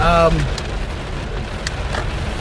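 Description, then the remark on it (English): Heavy rain pours down in a steady, dense hiss that holds at an even level throughout, with a brief snatch of a voice at the very start. “It's raining hard.”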